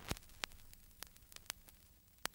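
Soft, steady surface hiss of a vinyl record with sharp crackles and pops scattered irregularly across it, about half a dozen distinct clicks standing out. No voices.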